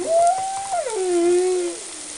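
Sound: humpback whale song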